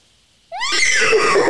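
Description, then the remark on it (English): A person imitates a horse neigh, a loud, quavering whinny that rises sharply after a moment of quiet and holds a wavering, breathy tone to the end. “Okay, I heard a horse noise. You know what that means. I've got to do my horse impression.”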